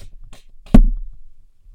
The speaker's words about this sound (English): Hold on. Let me get this cough out.